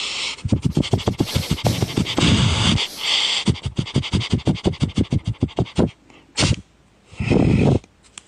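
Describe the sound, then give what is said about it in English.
A person imitates a dog sniffing with a long run of rapid sniffs, then a few sharper, breathier bursts near the end. “Can you sniff like a dog?”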